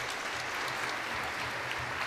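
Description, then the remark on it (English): Steady audience applause at Mass for the boys and girls who came up front, a dense wash of many hands clapping at an even, sustained loudness throughout with no pauses, plus a faint low murmur underneath. “Give everybody a round of applause for coming up here.”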